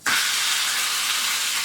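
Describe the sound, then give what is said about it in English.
A steak hits a frying pan on medium heat and bursts into a loud, steady sizzle, a dense crackling hiss that starts abruptly and holds strong throughout, with no talking. “I'm just going to cook my steak now anyway, because it's pretty gross here in my pocket.”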